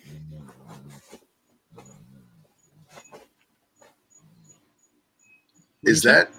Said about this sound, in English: Oh, that's the dog. Sorry. I just heard that. I was like, "What is that sound?"